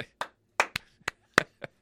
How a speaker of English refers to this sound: That's worthy of a clap.